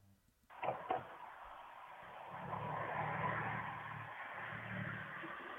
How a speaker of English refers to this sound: You can hear the car coming. Now it's going to pass in front of this driveway.